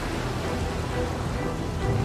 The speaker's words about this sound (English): Lift me up and throw me into the sea, and the sea will calm down for you. For I know that it's because of me that this violent storm has come upon you.